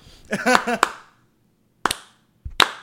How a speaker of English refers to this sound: Start every podcast with the new day clap.